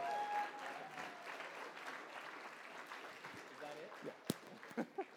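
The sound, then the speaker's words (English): A crowd claps steadily in a dense, continuous wash of applause for several seconds, then it thins out into a few scattered, sharper claps as it dies away. “All right, everyone give a round of applause”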